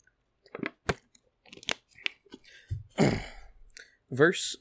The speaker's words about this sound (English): We'll sip a water real quick.